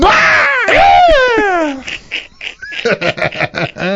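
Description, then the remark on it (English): A man lets out a loud, strained roaring scream, imitating wrestler Brock Lesnar's bellow for nearly two seconds, then breaks off into ordinary talking. “I imagine he gave the Brock Lesnar scream.”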